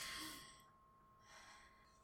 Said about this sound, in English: Breathe in. Keep breathing in. Breathe out.